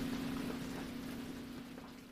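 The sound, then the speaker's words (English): Steady, soft rain patters on a surface, a continuous even hiss with a faint low hum running underneath, gently fading over a couple of seconds. “You're listening to Rainy Day Laundry.”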